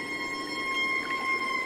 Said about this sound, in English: Lisa Walker recorded this humpback whale chorus in a long, narrow channel off Chichagof Island in Alaska